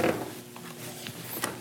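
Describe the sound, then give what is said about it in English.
A few soft plastic clicks from a garage door opener remote button being pressed, spaced unevenly over a quiet background with no talking. “You know what that is? Garage door opener.”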